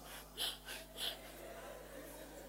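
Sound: imitated heavy panting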